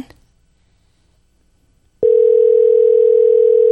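A steady, loud telephone dial tone starts abruptly after about two seconds of near silence and holds unbroken to the end, a constant electronic hum with no talk over it, as a phone call to a caller is placed live on air.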